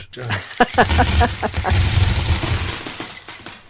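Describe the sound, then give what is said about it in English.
A loud cascade of coins spilling from a tipped-over hat and jangling, with rapid metallic clinks and clatters tumbling over a few seconds, and a voice speaking briefly over it. “Until they tip the hat and we hear the coins jangle all over the”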